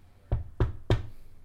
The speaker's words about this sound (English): The cops knock at your door.